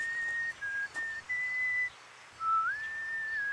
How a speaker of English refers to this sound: I walked across to the park and started to whistle.